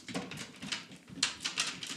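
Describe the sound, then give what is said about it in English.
A cluster of real dice, thrown all together, clatters and rattles in a dice tray, a quick run of sharp clicks and skittering taps rising and settling over a couple of seconds, fairly quiet, with no talking. “Tray noises.”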